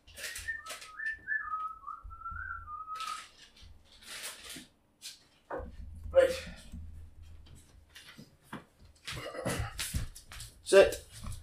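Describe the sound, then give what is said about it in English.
A dog whines in a thin, wavering high tone for a few seconds, then scuffling, shuffling paws and sniffing follow as the dogs Obi and Mac go to pick between treats held in people's hands, with people murmuring in the background. “The treats are in the hands. The dogs are going to pick it.”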